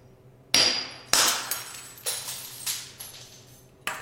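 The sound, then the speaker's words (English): A light bulb is struck against a brick on a desk and shatters, with two sharp cracks followed by several smaller crunching, tinkling impacts of glass fragments over a few seconds. “This light bulb, and I'm going to hit it on this brick right here. Hopefully it'll break.”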